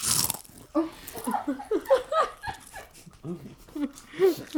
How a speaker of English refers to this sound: A celebratory 10 out of 10 crunch? Oh, wait. Okay, 3, 2, 1.